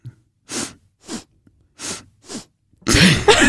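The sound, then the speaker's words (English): Four short, wet sniffs from a stuffy, runny nose, evenly spaced, followed by a louder, voiced burst of vocal noise at the end. “We both have the sniffles today.”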